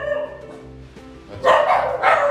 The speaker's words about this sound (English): It's my dog, bro.